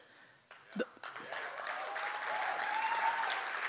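An audience breaks into applause, starting with a few scattered claps and quickly swelling into steady, sustained clapping that holds at a fairly loud level, with some faint crowd voices mixed in.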